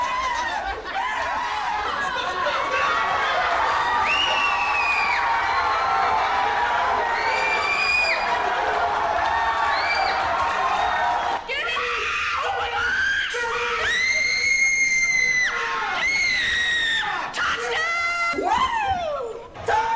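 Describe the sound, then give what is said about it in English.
A New England crowd cheers and shouts continuously, with many overlapping high, rising yells and whoops; scattered screams and laughter burst out over a steady roar of voices for the full length. “You know how to clap your hands. And you know how to shout.”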